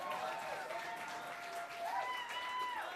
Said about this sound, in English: You have the choice. The audience applause will give it. Tinder Bumble Makeover or a serious one. Tinder Bumble Makeover. Let me hear a round of applause.